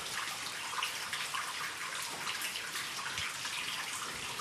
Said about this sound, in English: And over here to the left, the water is flowing quite a lot.